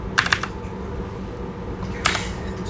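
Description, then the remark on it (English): A few sharp, clicky presses on a Keychron K4 mechanical keyboard: a quick burst of three near the start, then a lone keystroke later, over a low steady background hum. “I apologize for the clicky keyboard. It's a Keychron K4.”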